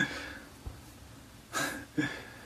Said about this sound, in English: Minor sneeze.